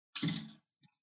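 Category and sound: household object, door being opened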